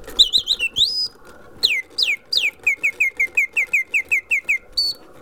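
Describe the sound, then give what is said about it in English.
A clockwork automaton of two birds, driven by clock gears on its base, chirps a quick burst of whistled trills, then a steady run of bright, downward-sliding tweets in even rhythm, clear with no talking. “Two birds moving mechanically with like clock gears on the bottom driving the whole thing.”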